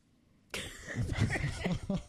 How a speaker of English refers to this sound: I just coughed.